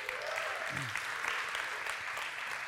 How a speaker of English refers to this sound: And let's just take a moment and give Andrew Slatke a little round of applause.